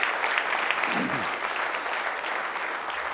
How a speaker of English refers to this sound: Let's go ahead and give him a hand clap of praise. He's worthy. Amen.